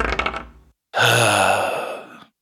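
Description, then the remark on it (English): Dice rolled for an investigation check in a tabletop game rattle briefly, go quiet for a moment, then tumble across a hard surface in a bright, sustained clatter that gradually fades before stopping. No one speaks. “Roll an investigation check. Roll it good”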